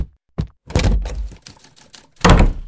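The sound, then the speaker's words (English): Blows from a cane landing on a man's head: a series of blunt thwacks, two of them heavy and loud, with lighter knocks between and no voices. “Oh, my head. You saw him attack me, Miss Standish.”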